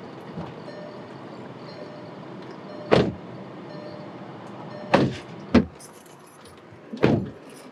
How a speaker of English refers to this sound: All right, so we just hopped out of the car to take a look at the original memorial plaque for the Memorial Day Massacre and the statue that was put up.